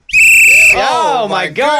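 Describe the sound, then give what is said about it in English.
A single loud, shrill whistle blast lasting just over half a second, followed right away by animated voices talking. “Anybody bring their whistle?”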